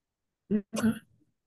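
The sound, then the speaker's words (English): A quick throaty hack followed at once by a longer, harsher cough, from two people both coughing late at night, fairly loud, trailing off into quiet. No one speaks. “We're both coughing.”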